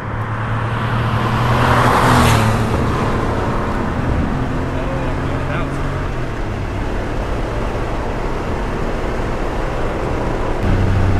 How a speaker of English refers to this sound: Dude, I'm starting to like these 3.2 engines. Oh yeah, there's a lot to like. A lot to like. I mean, it's not that dissimilar to your engine, right? It's just higher torque. Larger displacement. Larger displacement for sure.